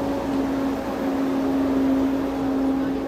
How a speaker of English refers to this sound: Don't name the company. Large truck, ladies and gentlemen. Shamrock. Large, well, he named the company. People love those milk products. Shamrock what? Foods, Inc.